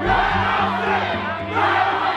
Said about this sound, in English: A crowd of protesters storms in behind them. Open the door! We chanted, let us in.